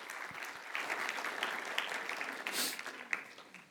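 A room full of people claps steadily, a dense wash of overlapping hand claps with a few sharper individual slaps standing out, sustained at an even level throughout.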